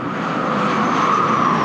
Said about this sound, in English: Up next, we have an Ewok on a glider.